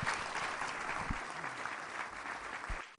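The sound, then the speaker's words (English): An audience claps steadily, a dense patter of many hands forming a continuous wash of applause at even loudness throughout, with no voices rising above it. “Can we give them just a round of applause and appreciation for their ministry to us?”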